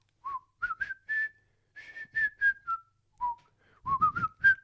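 A person whistles a string of short, wandering notes that rise and fall with no recognizable melody, clear, with brief pauses between bursts.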